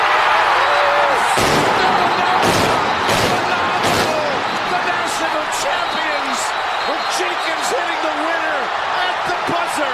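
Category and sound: fireworks going off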